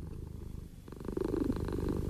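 A steady, rumbling cat purr, its low pulsing rhythm growing a little louder partway through and continuing without any talking.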